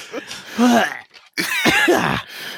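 A loud cough with a rough, throaty quality, two harsh bursts separated by a short pause, sounding strained and phlegmy.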